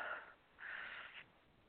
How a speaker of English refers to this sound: Already yawning.